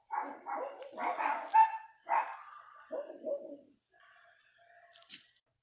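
A dog next door barks repeatedly in short, uneven, loud bursts, then the barking trails off into quieter, fainter yelps and a brief high chirp near the end.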